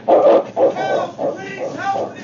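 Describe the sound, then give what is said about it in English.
A husky dog named King barks repeatedly while sprinting ahead through smoke, a quick series of five or so loud barks and yelps with little pause between them. “It was King sprinting ahead through the smoke who reached the boy first, and his barks helped guide the sergeant to the spot.”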